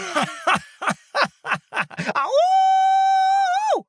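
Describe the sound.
A voice imitates a dog: about eight quick, yappy barks in a rapid rhythm, then one long, steady wolf-like howl that rises, holds, and falls away, loud.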